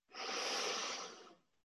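A long, steady nasal inhale, fairly soft, rising quickly and holding an airy hiss for over a second before tapering off: a full breath in through the nose during a guided relaxation. No talking.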